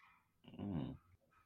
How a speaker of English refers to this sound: What's happening? I guess someone's, like, dog saw something that made it upset and it started barking.